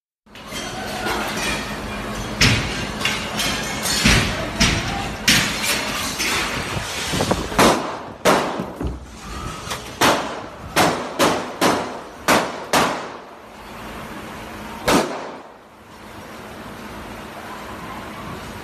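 Gunshots ring out in a long, uneven volley of sharp, loud cracks, some bunched in quick bursts, over a steady rumbling background, ending with one last shot before things quiet down.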